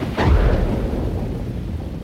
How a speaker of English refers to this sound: Does Thor cause thunderstorms? And if not, how do thunderstorms form? And what exactly is thunder?